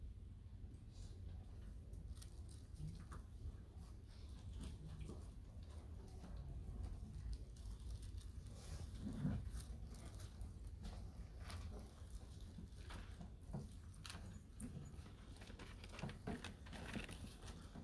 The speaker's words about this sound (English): got some rustling pages on.